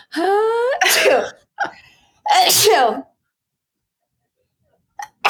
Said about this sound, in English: oh my God, I'm going to sneeze. Hold on, everyone.